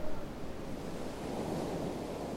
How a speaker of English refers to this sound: And Camp 11 was perched up on this hill. And you could hear the water and the waves and the wind howling down below.